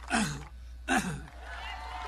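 Two harsh, fairly loud coughs about a second apart, each a short breathy burst, followed by a steady low hiss with no talking.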